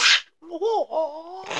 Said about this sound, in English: I slapped myself in the mouth.